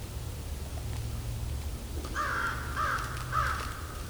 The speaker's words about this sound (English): Here comes a crow. There goes the crows. These are American crows.